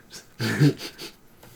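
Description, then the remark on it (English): A dog sniffs right at the microphone: a loud, breathy burst of snuffling with a low whiny edge, followed by a few softer sniffs. No one speaks. “Oh, you sniffing on the mic.”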